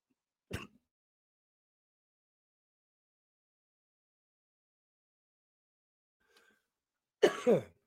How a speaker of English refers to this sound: Sorry, had a coughing fit there. Thank you for bearing with me there for a second.